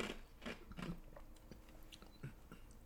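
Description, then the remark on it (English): Someone crunches an ice cube, with a series of sharp, brittle bites spaced irregularly over a few seconds and quieter chewing between them. No one speaks. “Sorry, I ate an ice cube.”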